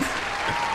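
A short burst of applause, steady crackling claps that fill the moment at an even, moderate loudness, with no voices over it.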